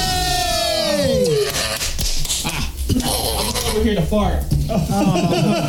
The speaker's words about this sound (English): Yeah, that was a fart pack. That's a 1-2 combo deal.